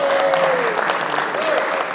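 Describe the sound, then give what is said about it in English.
An audience applauding steadily as praise to the Lord, a dense wash of many hands clapping, with a faint sustained tone drifting underneath and no clear speech. “Let's give the Lord a clap of praise.”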